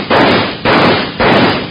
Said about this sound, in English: I was going to knock some holes in the bucket to let the water run through it. I'll just shoot some holes in it.